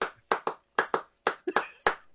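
About eight sharp hand claps, fairly loud, in an uneven rhythm that falls loosely into pairs, with no talking.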